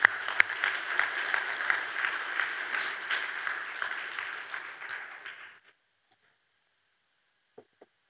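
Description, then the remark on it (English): A church audience, after a prayer, breaks into sustained, dense applause, clapping for courage with many hands clapping steadily for about five seconds, then it fades out quickly, leaving near silence with a couple of faint clicks. “Come on, let's clap for courage.”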